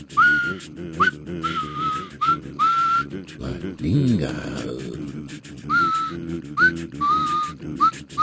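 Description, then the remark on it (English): Short, high whistle notes repeat in a bouncy rhythm, rising and falling in quick phrases, played fairly loud during a jam session over a busy background with people talking. “Maybe I should get my whistle out.”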